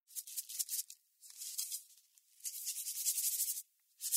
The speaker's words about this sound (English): Salting the sprout.